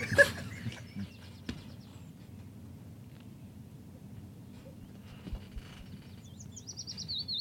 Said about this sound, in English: bird. Do you hear that? It's quiet.